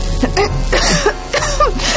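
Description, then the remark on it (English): A man pauses to cough into a silken handkerchief: a series of rough, muffled coughs, several harsh bursts in quick succession, fairly loud, with strained throat sounds between them. “He paused to cough into a silken handkerchief.”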